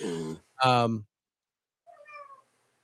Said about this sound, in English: But I hear a cat.